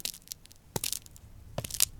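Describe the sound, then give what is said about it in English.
Two walking footsteps at a slow, steady pace of 70 beats per minute, each a crunchy, scuffing step as if on gravel, with faint rustling between them and no voices. “Number two, follow the rhythm of the footsteps as best you can.”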